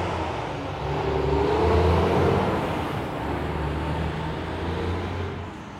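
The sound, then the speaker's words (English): A dump truck rumbles past outside, its deep engine drone swelling and then easing off over several seconds, steady, with no talking. “That was a dump truck.”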